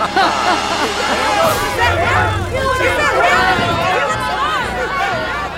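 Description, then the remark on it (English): A loud crowd commotion: many overlapping voices shouting and clamoring at once in a dense, agitated hubbub that stays steady throughout, with no single voice standing out. “There's some disturbance in the crowd.”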